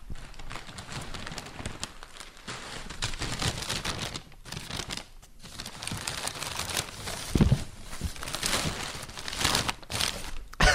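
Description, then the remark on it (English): Continuous crinkling and rustling of paper being pulled open and unfolded, with irregular louder crackles and tears, as a paper-wrapped parcel of fish and hot chips from a local fish and chip shop in Victoria is unwrapped. “It's good to see they wrap it in as much paper here in Victoria as they do back home.”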